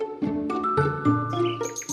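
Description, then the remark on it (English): Birds chirp and sing in spring in quick, bright bursts layered over a steady tonal background, fairly loud, with no one talking. “It's that beautiful time of year when the flowers come out and the birds start to sing.”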